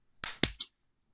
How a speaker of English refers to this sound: You'll figure it out with the OBS recording anyway, so. What? It's not like he needs a clap sync.